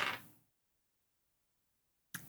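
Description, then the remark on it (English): A short clatter of a twenty-sided die rolled across a table for a slingshot shot at a lookout, quickly fading to silence, then a second brief rattle starts right at the end. “It's roll a d20.”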